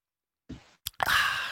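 Someone sips water: a soft wet sound, a small plop or click, then a longer airy slurping draw that continues to the end. No one speaks.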